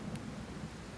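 Steady rainfall hisses throughout around a truck, while a low, rolling rumble of thunder sits underneath, continuous and moderately loud with no voices.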